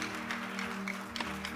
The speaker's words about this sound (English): Give the Lord another glorious fast clap.